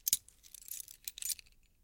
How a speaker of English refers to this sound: I inserted the key